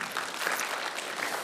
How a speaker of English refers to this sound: So can we give a big round of applause